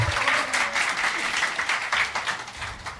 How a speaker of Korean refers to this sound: 아니, 근데, 떡도 사주셨는데 박수가 시원치 않네요.